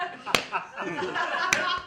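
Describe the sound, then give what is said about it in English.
Two sharp, loud slaps of a hand against a solid surface, about a second apart, cutting through ongoing chatter and background voices. “They don't know what I was slapping.”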